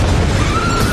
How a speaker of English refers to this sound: And the biggest explosion ever, again, talking about the way things used to be done, they blew up a fucking building in the middle of New York, and I saw the behind the scenes.